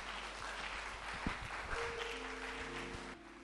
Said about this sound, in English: Stand to your feet, let's pray. And give Jesus praise. Amen. Clap your hands and give Jesus praise.